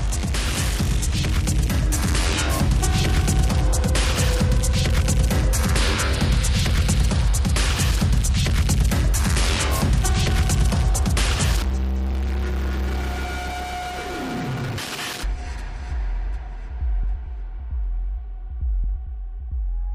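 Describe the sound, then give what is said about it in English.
A loud, dense industrial EBM track with pounding, distorted beats, which drops midway into a droning bass breakdown with sparser throbbing pulses. No voices. “And there's a lot to explore here, but right off the bat, I actually noticed a lot of industrial or EBM sounding tracks, which I found rather interesting.”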